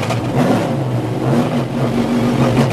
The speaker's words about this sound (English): What car is this? It's a Camaro in Trans Am 1. Oh, wow. It's a two-frame car. It's not like a real Camaro.